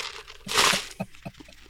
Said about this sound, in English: I'm fine with that, but it feels like you're slurping it right into the mic. Well, because the mic is hanging right off my ear with the earbuds, and so it's like right by the straw.